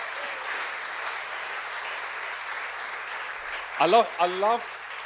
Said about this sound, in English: Well, there are 22 people who have signed up, members of our senior life group. And round of applause for those in the room who are part of that group.